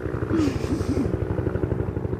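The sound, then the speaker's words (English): An army training helicopter near Middle Wallop, England, passes over a chalk stream fishing spot, its rotors beating in a fast, steady, low throb that carries through the whole stretch, with a faint engine whine and a brief hiss rising early on. “But penetrating that is this throb of a helicopter.”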